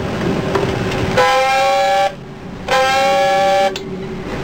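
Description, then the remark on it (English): Two loud, harsh blasts of a submarine dive alarm, sounded as the ship is ordered to submerge, each about a second long with a slight upward swoop in pitch, separated by a brief pause over a low background rumble. “Sound two blasts of the dive alarm.”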